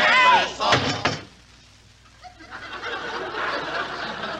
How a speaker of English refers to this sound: Mary, slam down the lid.